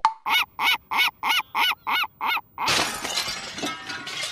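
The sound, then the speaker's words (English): A rapid string of about nine nasal, honking cartoon bird squawks in an even rhythm, loud, from an Alfred Hitchcock's Angry Birds parody in which the birds attack with a large catapult, followed by a noisy crash of shattering and tumbling debris. “My goodness, it's the birds. They're attacking with a large catapult?”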